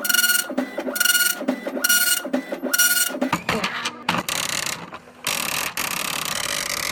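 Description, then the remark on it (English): An impact printer, printing by striking an inky ribbon, chatters loudly, its print head hammering in quick rhythmic bursts of buzzing rattle, pausing briefly between lines before resuming a longer, steadier run of grinding mechanical printing. “Most printers were large, loud, and expensive.”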